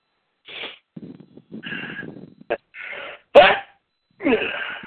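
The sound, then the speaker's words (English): A single sharp, loud sneeze bursts out, set among several shorter breathy, throaty noises and brief vocal sounds before and after it. “The sneeze got me.”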